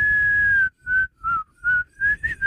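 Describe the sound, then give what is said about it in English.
A whistled tune played backward: one long held note followed by five short, choppy notes in a quick, uneven rhythm, fairly loud, with a low rumbling noise underneath and no talking. “you're going to hear it 2 times backward.”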